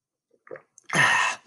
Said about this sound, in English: I'm going to take a sip of water right now.